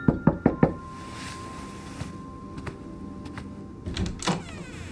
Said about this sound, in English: The actual evening part of Christmas Eve grays into the scene as the fairy lights go on across the houses around us, and Mom knocks on my door.